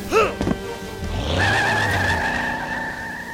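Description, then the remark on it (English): A car engine revs hard and tires screech as a stolen car peels out and speeds off, the loud high squeal sustained for several seconds over the engine roar. “That meal just stole my car.”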